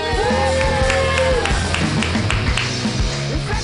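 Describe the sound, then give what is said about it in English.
A comedy audience at Mutiny Radio applauds and cheers steadily for the next comedian, dense clapping mixed with whoops and shouts that hold at a loud, even level throughout. “So please, you guys, clap like she's your long-lost sister from another mister.”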